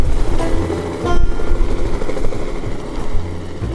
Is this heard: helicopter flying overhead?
yes